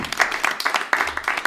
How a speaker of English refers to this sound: and lots of clapping tonight, great clappers.